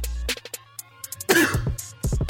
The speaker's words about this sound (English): See, my cough called bullshit.